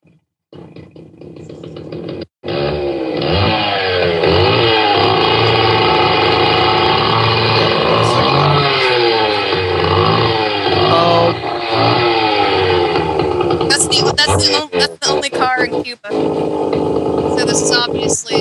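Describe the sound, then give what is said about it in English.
A loud engine revs steadily, its pitch sweeping up and down for most of the stretch before breaking into choppier bursts near the end. “That's the only car in Cuba.”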